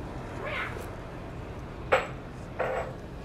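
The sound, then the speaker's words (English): Mac, a pet, sniffs at a phone in three short, soft, breathy puffs spread over a few seconds, with a faint steady hum underneath and no talking. “That was Mac sniffing the phone.”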